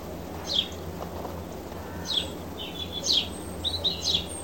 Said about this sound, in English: I'm afraid that will have been birdsong.